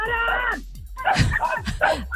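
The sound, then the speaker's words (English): Dogs bark and yip loudly in quick, overlapping bursts, several sharp, high-pitched calls in rapid succession with barely a pause between them. “I'm dealing with these loud barking dogs.”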